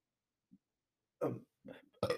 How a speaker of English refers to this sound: and hold on, I need a burp.